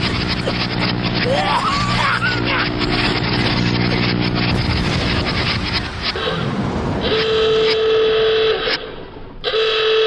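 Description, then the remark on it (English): A struggling biplane engine with engine trouble drones loudly and roughly, its pitch wavering and sputtering as it labors, with a steady whine rising near the end. “He's got engine trouble.”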